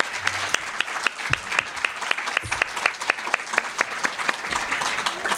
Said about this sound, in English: So round of applause